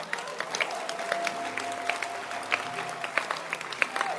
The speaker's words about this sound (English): Clap your hands.